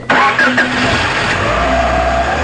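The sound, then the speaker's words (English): A car engine cranks and catches with a sharp burst, then settles into a steady, loud rumbling idle, with no voices. “So you get in your car and you start driving.”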